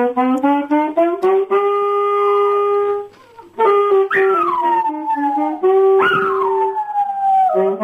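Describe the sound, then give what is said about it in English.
Three dogs howl along with an alto saxophone, their wavering, sliding cries rising and falling over the sax's sustained notes, loud, with a brief pause midway. “Singing dogs.”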